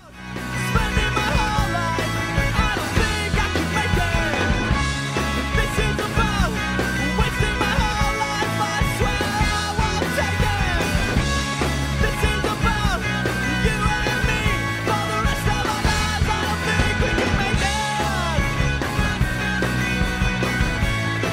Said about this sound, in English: I kind of build out of that last part, and it jumps back into like him yelling some vocals. I don't know what he's saying, but it's something cool, I'm sure.